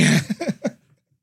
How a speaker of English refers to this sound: Had to clear my throat on that one.